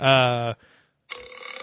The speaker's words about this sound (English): We're burping the whole fucking time.